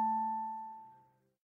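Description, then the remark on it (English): A telephone rings once: a single bright, bell-like tone with a low hum beneath it, held steady and then fading out over about a second, with no voices. “And a few weeks after writing him a letter, the phone rang.”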